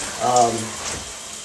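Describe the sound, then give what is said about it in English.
Shower water runs as a steady hiss throughout while a person is in the shower, a couple of days before New Year's at the end of 2021, with a short burst of voice rising briefly over it near the start. “I'm in the shower right now.”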